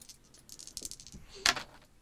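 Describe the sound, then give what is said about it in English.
Dice rolled during a game rattle briefly, followed by a sharp, bright clatter as they tumble and land on a hard surface. The sound is moderately loud, with no talking. “It's that, or you just roll with a zero, but just roll the dice and see if you exist.”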